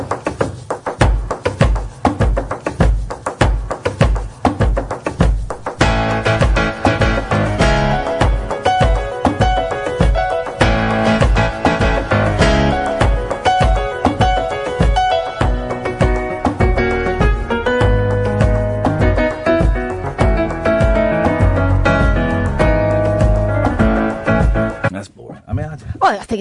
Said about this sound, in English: Right, he's got a little repeating box, so he's banging a piano.